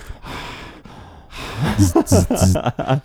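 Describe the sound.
Heavy, noisy breaths sound right up against the microphone, slow and airy at first, then give way to louder voiced bursts that sound like someone talking or laughing.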